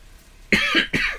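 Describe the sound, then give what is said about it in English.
Two quick, harsh coughs in close succession, loud, with a short gap between them and no talking around them. “And I cough.”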